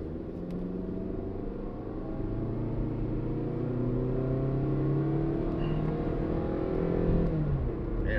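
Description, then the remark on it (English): A car engine accelerates steadily going up a hill to pass a moped, its low rumbling drone rising in pitch as it revs under load for several seconds, continuous with no talking. “Going up a hill, passing the moped.”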